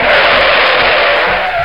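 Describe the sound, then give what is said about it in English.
A car skids off the road: a loud, sustained tire skid screeches steadily for nearly two seconds, a broad hissing squeal with a low engine rumble underneath and no voices. “We're going off the road.”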